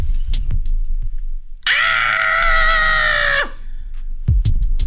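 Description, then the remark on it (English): An adult voice recreates a new sound a little boy has been making lately, imitating his shrill scream: one sustained high-pitched shriek of nearly two seconds, loud, with brief grunty vocal sounds before and after. “Literally just screams like that.”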